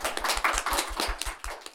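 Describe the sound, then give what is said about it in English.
A small group applauds, with steady, fairly dense hand claps repeating quickly for a couple of seconds, moderately loud with no voices. “Let's give a round of applause.”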